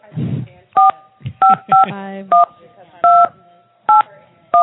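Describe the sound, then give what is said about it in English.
Telephone keypad tones punched in irregularly to enter a PIN number during a phone call into a live show: about seven sharp, steady two-pitch beeps, each brief and loud, with faint murmuring voice sounds in the gaps between presses. “I'm sorry, but I did not hear you press at least 4 digits of your PIN number.”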